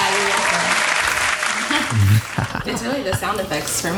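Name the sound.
applause sound effect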